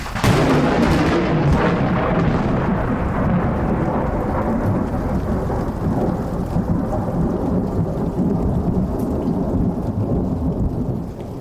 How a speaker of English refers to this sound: recorded this thunderstorm on the 4th of July in Boise, Idaho, that upstaged a fireworks display by igniting several fires and destroying a million-dollar home.